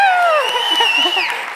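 A crowd cheers with high, sliding whoops over a steady wash of clapping, loud, lasting only a moment.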